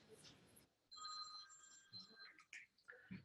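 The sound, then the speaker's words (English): A phone ringtone plays a short electronic melody of steady, bright tones for a second or two, fairly faint, with brief muffled voice sounds before and after. “I'm sorry, let me just make sure my phone is turned down and shut off.”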